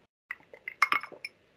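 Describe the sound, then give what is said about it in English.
Several light glass clinks and taps, bright and ringing, come in an uneven cluster over about a second as someone takes a sip of a beverage, with a soft liquid slosh among them and no voices. “Okay, so this is also a very good question that requires me to take a sip of this excellent beverage.”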